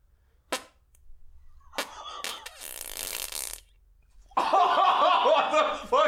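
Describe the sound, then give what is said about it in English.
A few sharp pops lead into a long, raspy fart lasting about a second, then loud, high-pitched laughter breaks out and continues to the end. “There's gas in me guts.”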